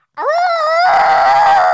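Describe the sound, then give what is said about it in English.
A person imitates a long, pained howl: one loud, sustained wailing cry that rises sharply, holds steady and turns rougher and strained partway through, with no talking. “She lets go and she's howling and weeping, but she is trying to get back up”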